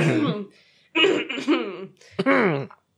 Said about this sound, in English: I'm going to clear my throat for this exciting exciting summary.